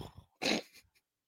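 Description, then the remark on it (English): A person's voice imitates a lion's roar in one short, loud, raspy growl near the microphone. It is preceded by faint low murmuring and fades into brief quiet tail sounds. “A roar. Lion noise.”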